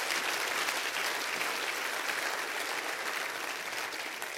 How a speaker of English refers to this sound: Clap your hands all over the house. That's good stuff.